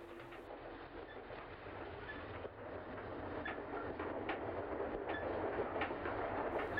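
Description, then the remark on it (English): A train pulls out of a station, rumbling and clattering steadily and growing slightly louder as it gets underway, with faint rhythmic clicks of wheels over the rails and no voices. “The engine driver whistled in cheerful response, and the train moved out of the station.”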